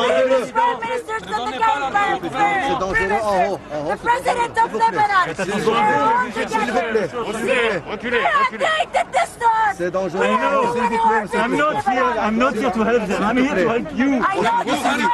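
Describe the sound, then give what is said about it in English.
A dense, loud crowd of many overlapping voices chattering and calling out at once as it mobs French President Emmanuel Macron in the streets of Beirut, Lebanon, a steady babble that continues without pause, with individual shouts rising out of the noise. “Mr. Macron was mobbed by crowds as he walked the streets of the capital of Lebanon, a former French colony.”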